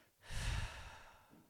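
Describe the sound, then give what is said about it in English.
One long, breathy ujjayi breathing exhale with a soft, ocean-like hiss, loudest at the start and tapering off gradually over about a second, heard alone with no talking. “And as you exhale, create that ocean sound”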